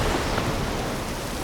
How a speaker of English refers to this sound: Out of nowhere, the wind comes up and massive waves start swelling and breaking against the coast.